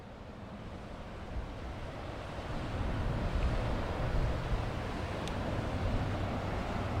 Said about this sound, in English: In front of me is a lovely image. In front of me, the river is relatively high. Here, it genuinely looks like a river. It's as close to a river as one can imagine.